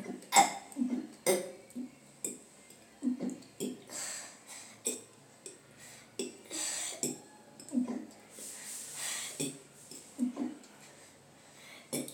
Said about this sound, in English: Is it hard to fake burp? Did you have to learn it as a skill? It's just a skill. I was born with it.